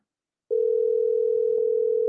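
A telephone dial tone, as a call to immigration is placed, switches on abruptly after a brief silence and holds as a steady, unbroken mid-pitched hum at constant loudness, with no voices.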